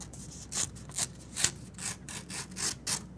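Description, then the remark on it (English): Paper being ripped live on air for a contest on the show Set on the Screen, in a quick series of about seven or eight short, crisp rasping tears, each a bright hissy burst in a steady rhythm, with no talking. “Yes, I'm ripping paper live on the air.”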